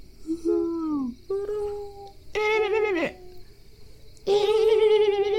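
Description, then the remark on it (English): A voice in a forest imitates owls hooting, with four drawn-out, tonal hoots that slide and waver in pitch, the last two louder. A faint, steady insect-like buzz continues underneath. “You can hear the owls. Yeah. Can you hear them? They're like...”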